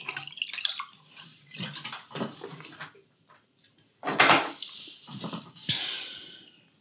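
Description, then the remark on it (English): Water is poured and sipped: a few splashy trickles, soft gulps and breaths, then a brighter steady pour that fades out. Nobody speaks. “here, 1 sec, water break.”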